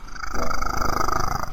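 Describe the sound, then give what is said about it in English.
A steady, loud purr from Benjen, a cat sleeping on a lap about a foot from the microphone, a continuous low vibrating drone with a faint pulsing texture that holds evenly throughout. “And I think I hear a purring cat.”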